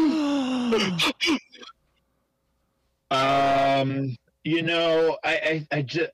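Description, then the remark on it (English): Loud voices imitate a shocked audience with drawn-out gasps and groaning exclamations, a short burst, then a pause, then a longer voiced groan and a flurry of quicker gasping sounds. “This is where we insert all of the gasping noises from the audience.”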